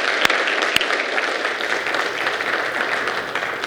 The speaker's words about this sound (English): Hey, can we give a quick round of applause for this worship team?